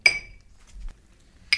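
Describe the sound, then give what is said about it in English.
A sharp glassy clink rings out and fades, followed by soft dull scraping and thuds, then a second bright clink near the end, as ice cream is scooped into a glass, with no talking. “So, we'll put the ice cream in the glass.”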